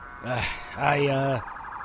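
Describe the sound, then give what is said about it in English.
Approaching sirens wail, rising and falling in pitch, loud, with two swelling tones followed by a fainter warbling siren continuing in the background. “Those sirens are almost here.”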